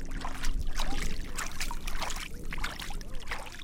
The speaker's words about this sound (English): wades in knee-deep to plant tule. The reeds used to grow abundantly here and gave Tulare Lake its name.